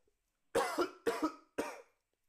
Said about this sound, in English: I got a cough.